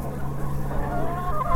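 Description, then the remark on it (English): A rooster crows, a loud, strained call held for over a second against a steady low hum of outdoor background noise, with no one talking. “That's a proud rooster”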